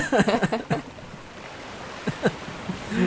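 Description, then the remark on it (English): A boat riding over ocean waves on a trip to Papua New Guinea: a steady wash of rushing water with a few louder splashes near the start and again toward the end. “Get on that boat.”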